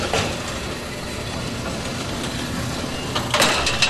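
The motorized gate of an electrified high-security prison sally port, operated remotely by a guard in a nearby tower, grinds open with a steady mechanical rumble, ending in a burst of sharp metallic clanking and scraping as it moves along its track.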